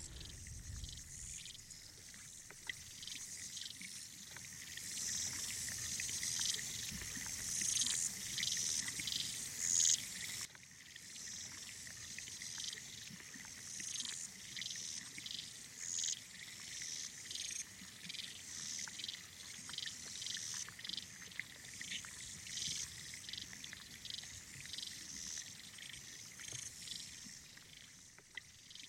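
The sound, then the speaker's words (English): The Mary River, where a few Mary River turtles live, flows and trickles steadily, with a chorus of insects and birds chirping continuously in the background, an outdoor natural soundscape with no voices. “We can't hear what they say, but we do have a recording of the very river in which those few Mary River turtles live, the Mary River. And hear the sound of the water.”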